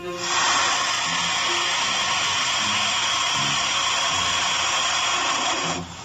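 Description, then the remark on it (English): A baby turkey vulture gives one long, steady, breathy hiss lasting about five seconds, harsh and airy like escaping steam, then cuts off abruptly. No voices are heard. “Our bird is the turkey vulture, a medium-sized vulture, mostly black with a red, featherless head and upper neck.”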